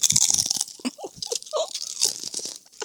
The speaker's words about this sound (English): Crunch. Chew that chip.